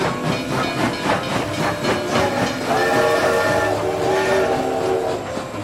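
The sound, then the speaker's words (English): A steam train rolls into Willoughby, the last stop of the line, with rhythmic chuffing and a steady hiss of steam, then a sustained whistle-like tone rises as it comes to a halt, loud. “Last stop of the line, Willoughby. Thank you for riding Shaq's train.”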